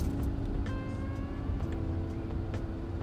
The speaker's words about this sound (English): And I'm going to move my car because this is not a good spot at all. This parking lot that I'm in is quite tight.